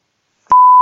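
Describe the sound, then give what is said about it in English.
A loud, steady pure-tone censorship bleep starts abruptly after a moment of silence and holds at one pitch to the end, with no speech audible. “Like, is that going to be bleeped out?”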